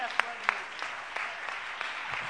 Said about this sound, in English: let's give God another big hand clap this morning.